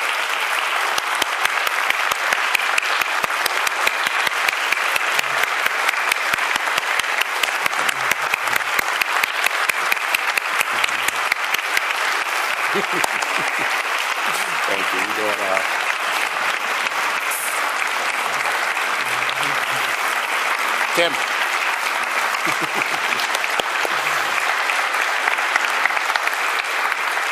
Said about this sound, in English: I just want to have these people all stand up and come join me here in the middle, and I just want us to give them one more round of applause here for what they offered so briefly today.